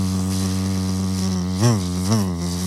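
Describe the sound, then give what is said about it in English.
A person hums a sustained, droning buzz imitating a deer fly, steady, with two quick swooping pitch rises near the end as if the insect circles past. “You go to the back road and you have, on a good day, 5 deer flies circling you.”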